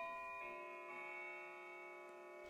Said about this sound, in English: All that's changed in the past 10 hours has been the movies appearing on and off my screen, and the sound of my clock, which sounds every hour.